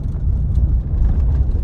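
A truck engine rumbles steadily as the vehicle drives across sagebrush in a valley, with brown horses racing ahead of it; a loud, continuous low drone with no voices over it.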